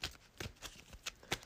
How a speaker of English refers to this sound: before I even do that, shuffle the encounter discard. I hate that. Shuffle the encounter discard pile into the encounter deck.